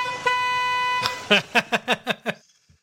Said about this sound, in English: I love that sound. Finally made the Road Ahead sounder. So there we go. The honking at the end is the best part.